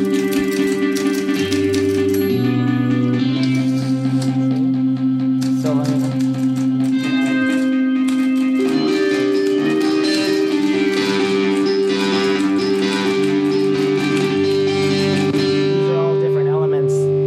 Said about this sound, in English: And then you can see when you add different elements to the mix, here's the typewriter, and here's like another rock guitar that's going on under it.